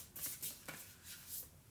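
Playing cards being shuffled and picked up by a microphone: a few short, crisp papery riffles and flicks come in quick, uneven bursts, fairly soft, with no one speaking.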